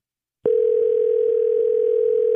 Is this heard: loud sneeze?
no